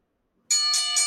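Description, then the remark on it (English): A loud metallic ring bell is struck three times in quick succession, the bright clangs overlapping into one sustained ringing tone, clear with no voices. “can we get that bell ring, please?”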